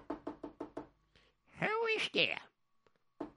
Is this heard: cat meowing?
no